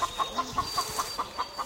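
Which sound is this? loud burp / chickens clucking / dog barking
chickens clucking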